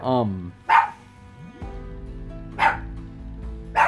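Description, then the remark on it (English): The speaker's dog barks three times in sharp, evenly spaced bursts, each loud and clipped, after a brief voice at the start, with a steady low hum running underneath. “So yeah, my dog's going nuts.”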